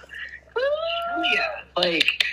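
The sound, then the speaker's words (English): A cat named Captain Meow Meow meows twice: a long, drawn-out meow that rises and holds, then a shorter, harsher one right after, with no one talking. “That is our Captain Meow Meow.”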